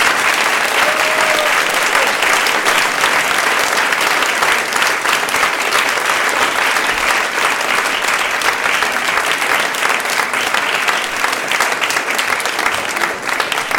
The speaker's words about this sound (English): Smattering of applause. Sir Kay did not seem to be a popular favorite with the crowd.